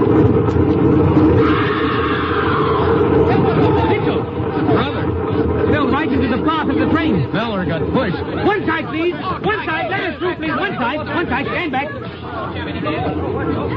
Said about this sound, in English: Hey, look, that crowd over on the platform.